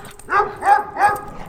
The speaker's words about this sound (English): I got this dog. That's not just a dog, it's a hellhound. It'll rip you apart.